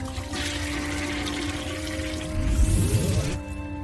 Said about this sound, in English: Yeah, you have you're dipping that good mayo into your bowl, and you hear the toilet flush once more.